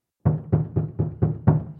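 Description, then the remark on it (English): Six heavy, evenly spaced, loud knocks on a door, each thud resonating briefly before the next in a steady insistent rhythm, with no voices. “don't answer the door! Leave it!”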